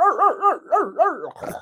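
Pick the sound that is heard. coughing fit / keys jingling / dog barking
dog barking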